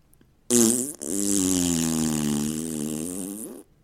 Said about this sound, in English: He opened up the top of the bag and held it behind him, like he was going to sit in it. Then he ripped a huge fart into the bag.